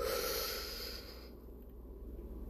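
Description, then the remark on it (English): A slow, deep inhale through the nose, demonstrated as part of a breathing exercise, a soft airy rush that builds and then fades after about a second and a half, leaving a quiet held pause. Fairly faint, with no talking. “We're not going to start yet, but I just want you to hear the breathing. So here we go. Deep breath in.”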